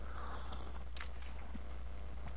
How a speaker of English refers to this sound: Let me tell you what this tastes like. Let me take a sip of this right now.